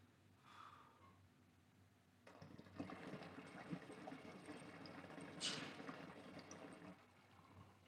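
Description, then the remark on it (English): Water bubbles and gurgles through a large glass recycler pipe with a 16 mm drain and an oversized perc, starting after a quiet moment and running steadily for several seconds with big, bursting air-pocket pops and choppiness, with no talking. “And the way the water is like bubbling through here, it's like these huge like air pockets.”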